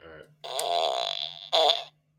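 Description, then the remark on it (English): A synthetic fart sound effect from a fart machine plays: a long buzzy, sputtering blast followed by a shorter, louder burst, with a steady low hum underneath. “I got a fart machine.”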